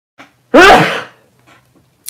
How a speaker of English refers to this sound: Hey, I sneezed into my elbow. How about that?